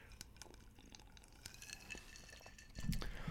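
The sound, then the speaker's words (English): A glass of whiskey and ginger ale is stirred, with quick repeated clinks of a spoon against the sides over a low fizzing background, moderately loud, no voices. “Glass of whiskey and ginger ale, much like right now.”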